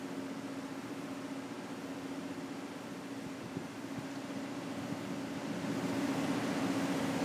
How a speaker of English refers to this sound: Let's give the people the ASMR of car turning on and pulling away.